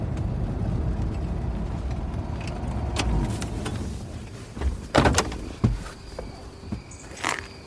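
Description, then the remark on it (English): A car's engine rumbles low and then winds down as it stops at a fork in the road at night, followed by a couple of sharp clicks and a clunk as a car door opens, with faint night insects in the background. “Kit gets out and looks up at the night sky”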